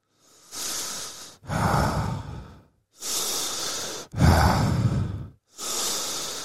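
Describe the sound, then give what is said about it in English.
Deep, steady breathwork breathing, alternating long airy inhales and heavier, rougher exhales in a regular rhythm, about five breaths with brief pauses between them and no talking. “Now, imagine breathing with the power of breathwork, having the power of breathwork behind that, and you're now breathing to this.”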